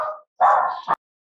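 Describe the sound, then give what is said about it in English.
A dachshund barks: the tail of one bark fades out, then a longer, loud yapping bark ends in a sharp final yelp, followed by silence. “And the dachshund.”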